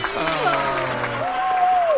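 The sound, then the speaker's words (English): A woman contestant's excited cheer, with rising and falling whoops over about two seconds, set against a steady wash of crowd noise and scattered applause. “Okay, she's cheering.”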